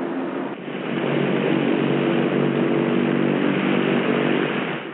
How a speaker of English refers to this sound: Left. Both. Right. Both. Number four. And so on until all four engines have been run up and checked.